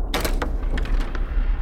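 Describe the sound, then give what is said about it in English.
A door leading from the kitchen to the dining room of a main house slides or swings open with a brief scraping rush and a couple of soft knocks, over a steady low rumble, with no voices. “So, open the door.”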